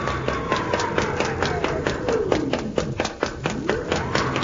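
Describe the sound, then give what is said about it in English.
A heavy automatic door in a large castle hall grinds shut and swings open again, a groaning tone sliding down then climbing back up over a steady run of rapid mechanical clicks and taps. “Hey, now the door's swinging open again. It is automatic.”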